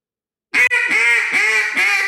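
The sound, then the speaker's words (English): A quick run of about five loud, raspy imitation duck quacks, a person demonstrating fine, coarse and raspy duck calls, strung together with little pause after a moment of silence, with no talking. “Three completely, totally different ducks that sound all awesome.”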